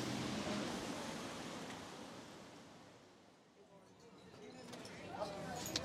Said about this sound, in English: to finish, we're sitting outside the Café de Flore, also on the Boulevard Saint-Germain, which is another of the incredibly historic cafes on this street.